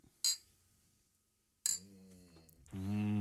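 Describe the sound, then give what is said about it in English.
Two bright glass clinks in a toast, about a second and a half apart, the second ringing on briefly, followed by a louder, steady sound near the end. “Cheers.”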